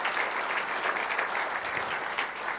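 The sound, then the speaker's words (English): A crowd claps steadily in sustained applause for a woman as she comes out, a dense, even patter of many hands with no voices rising above it, holding a constant level throughout. “Give her a big round of applause as she comes out now.”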